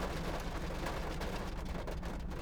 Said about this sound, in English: Oh, starting to rain. I hope you can still hear me.